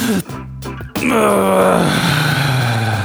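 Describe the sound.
A person imitates the groan they make while sleeping: a brief strained catch of breath, then one long, loud, drawn-out moaning exhale that slowly falls in pitch.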